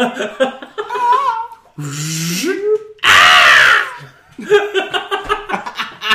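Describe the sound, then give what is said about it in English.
The Skype opening jingle, a short rising tonal sound, plays, then the Wilhelm scream bursts in, loud and harsh, for under a second, followed by voices chattering and laughing. “It's like the post on Tumblr where it plays the lyrics and then it's the Skype opening noise and then the Wilhelm scream.”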